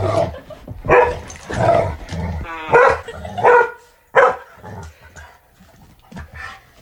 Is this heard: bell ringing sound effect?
no